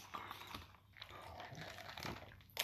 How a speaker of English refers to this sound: I probably shouldn't be drinking water like that. It's probably gonna sound weird.